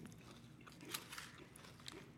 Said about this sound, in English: I'm eating this, and I'm like, oh, I can get addicted to cereal quick. Oh, my God.